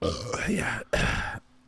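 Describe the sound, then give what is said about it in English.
A loud burp after drinking Modelo beer rumbles for nearly a second, broken by a brief gap before a second shorter belch follows, then quiet. “Sorry, I'm burping like crazy.”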